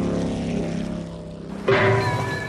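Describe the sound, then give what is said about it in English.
A motorboat engine drones steadily, a low humming rumble, then swells abruptly louder and rougher partway through, with a brief ringing ding as Bernie, dragged behind the boat, hits a buoy. “Yeah, kind of water skiing behind it, kind of getting dragged behind it, and get hit by the buoy.”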